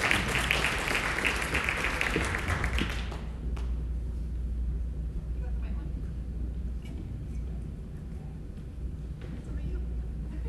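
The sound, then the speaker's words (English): A crowd claps loudly for about three seconds at the start for their leader, a woman, then the applause cuts off, leaving a low, steady rumble with faint bumps and murmur. “Let's give her a round of applause for our fearless leader.”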